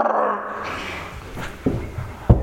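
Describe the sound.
A voice makes a low, rough, sustained buzzing growl imitating a car hitting the rumble strip on the side of a highway, fading into a few short gruff bursts toward the end.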